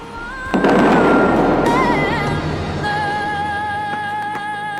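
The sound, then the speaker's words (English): A sudden loud boom erupts as fountain jets on the Las Vegas Strip blast water hundreds of feet into the sky, followed by a sustained roaring, hissing rush of water, with music playing faintly beneath. “As the song picks up, the water blasts hundreds of feet into the sky. The force is so powerful, it sounds like a cannon.”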